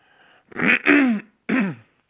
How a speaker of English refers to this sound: So I didn't want her ministering to y'all, and I'm clearing my throat.